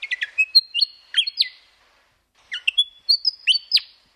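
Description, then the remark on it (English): A willie wagtail, a small Australian bird, sings a bright, twinkly, melodic phrase of quick whistled notes, pauses briefly, then repeats the same sweet phrase. Clear, with no other sounds. “They have a song, which is that pretty twinkly kind of noise that people might be familiar with.”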